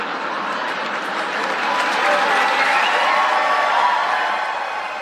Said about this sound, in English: Pretty sustained applause there from the audience.